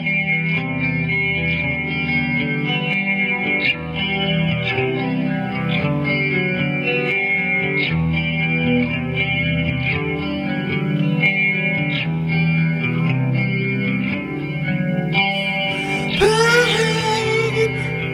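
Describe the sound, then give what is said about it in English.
A loud, heavy metal worship song with thick distorted guitars driving a steady rhythm throughout, ending in a brighter, squealing guitar flourish. “So here it is, man, a song of worship, a song of amazement and awe, and a declaration of how awesome our Savior is,”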